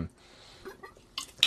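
Quiet sipping of Cuervo Especial tequila: a soft wet mouth sound at the start, a stretch of near-silence, then two short hissy slurps close together at the end.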